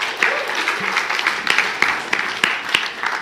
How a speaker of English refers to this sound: So let's just give them both a round of applause.